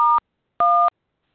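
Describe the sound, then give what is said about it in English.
Two short electronic keypad tones, the dual-pitch beeps of someone pressing phone buttons during a phone call, sound clear with a brief pause between them. No one speaks. “Yeah, someone is beeping on their phone. Please stop.”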